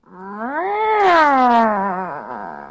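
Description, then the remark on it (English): A person's voice imitates a cat's long, whiny, dissatisfied meow, a single drawn-out call that rises, then sags and wavers as it trails off. It is fairly loud, with no other sounds. “Okay, then we have the dissatisfied meow.”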